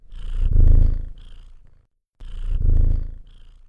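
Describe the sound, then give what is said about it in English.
A water bong bubbles in two loud bursts separated by a brief silence as it is smoked, each a low, rumbling gurgle that sounds almost like a purr. “Hey, it kinda sounds like me bong is purring when I toke it, don't you think?”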